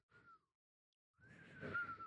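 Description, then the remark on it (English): Two breathy, airy whistle attempts: a short wavering note, a pause, then a longer strained one that barely holds a thin tone through the rush of breath. “We would not make good whistleblowers, clearly. Not if it, not involves, if it involves actually whistling.”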